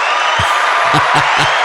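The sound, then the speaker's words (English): A dense wash of crowd cheering and clapping fills the short clip at a steady, loud level, with a few low thumps breaking through near the end. “The crowd is amazing. The crowd goes wild, right?”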